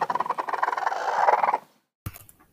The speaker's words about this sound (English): Also, in case you were wondering what a chicken's growl sounds like, here it is.